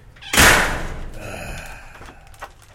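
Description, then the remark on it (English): A heavy metal prison cell door slams shut with a loud, sharp clang, followed by a ringing metallic decay that fades over a couple of seconds. “By the way, whenever we need like a prison door close.”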